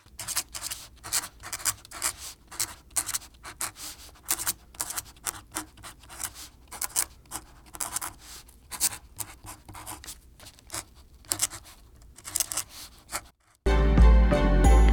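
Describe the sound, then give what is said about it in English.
A scientist's pen scribbles notes quickly across a sheet of paper attached to a clipboard, fairly quiet, in short irregular scratchy strokes, ending with a brief louder rustle. “He slowly looks down into the box and scribbles some notes onto a sheet of paper attached to a clipboard.”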